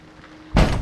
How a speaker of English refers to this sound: What was that? It's just the storm shutters. They've been doing that all night.